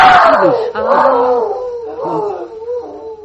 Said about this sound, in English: Molly, that sound. That's that dog. That's that Flash. Oh, dear. Him and his voice of doom.